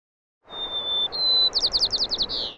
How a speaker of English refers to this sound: Recording birdsong isn't so simple as leaving a mic out in open air and hoping a sparrow happens to flutter across it.